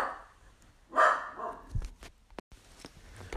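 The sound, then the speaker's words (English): A single sharp dog bark rings out, followed by a few faint shuffling and clicking sounds in otherwise quiet surroundings. “excuse me, the dog.”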